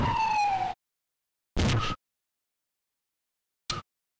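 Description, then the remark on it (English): Emergency sirens wail loudly in three choppy bursts separated by silence: a longer sliding tone first, then two shorter abrupt fragments, with no voices. “As you can hear, we have the sirens are gone.”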